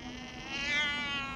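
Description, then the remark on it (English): A tabby cat on an avenue lined with hornbeam trees lets out one long, drawn-out meow, a rich, whiny tone that swells slightly in pitch and loudness toward the middle before easing off. No voices are heard. “A tabby cat pushes through one of the neat box hedges and rubs up against him.”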